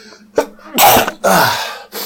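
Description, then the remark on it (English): A quick sharp inhale, then two loud, explosive sneezes in a row, followed by a shorter third burst. No one talks. “Excuse me, I gotta sneeze.”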